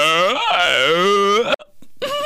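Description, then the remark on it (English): A voice imitates how a mother burps with a long, loud, drawn-out croak whose pitch wavers and sags, then cuts off briefly before a second voiced burst begins. “Every time my mom burps, it's never like,”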